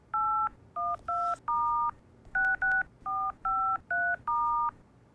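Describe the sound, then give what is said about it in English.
A phone number is punched in on a keypad: ten crisp dual-pitched beeps in quick, slightly uneven succession, clear over a faint background hiss, with no one talking. “can you help me make a phone call?”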